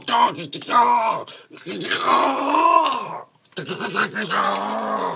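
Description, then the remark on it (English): A single voice performs strained, choked-off crying: groaning, wavering wails in three close bursts separated by brief breaks, loud, with no actual words. “I'm trying to cry, but it's being choked off.”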